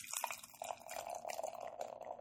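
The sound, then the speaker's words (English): A chocolate raspberry stout of 7.1% alcohol pours steadily into a glass, a continuous bubbling, splashing stream with a rising fill tone, lasting a couple of seconds with no one talking. “It's pouring. When I'm watching it as it's pouring, it's very light in color.”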